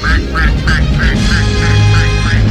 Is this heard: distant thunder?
no